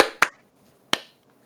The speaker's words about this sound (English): All right. Clap, sync. 3, 2, 1.